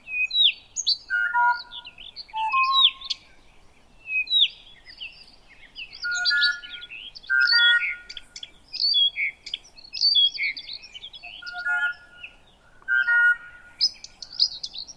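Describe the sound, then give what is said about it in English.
About six birds in different trees sing a fast, intricate dawn chorus at 5 a.m., chirps, trills and whistles overlapping in rapid bursts with brief pauses, clear with no voices or other noise. “It was 5 a.m. and they were just singing this strange, complex, fast-moving song that seemed immediately to respond to things that I was doing, little things.”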